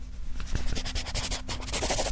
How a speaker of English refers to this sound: Write it down. Write it down with your fancy new pencil. First, real quick, we'll give you a moment. Go ahead, write it down.